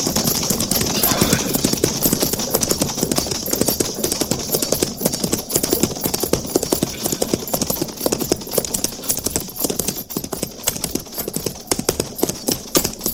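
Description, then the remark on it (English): A single rider's horse clip-clops steadily toward the listener in a brisk, continuous rhythm, with sharp repeated hoofbeats standing out over a noisy outdoor background and no talking. “Captain, single rider approaching.”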